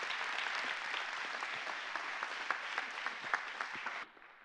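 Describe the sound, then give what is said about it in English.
An audience at a church service applauds in a dense, steady wash of clapping with scattered sharper claps, holding strong for about four seconds before dropping off abruptly to a faint tail. “Let's give them a hand.”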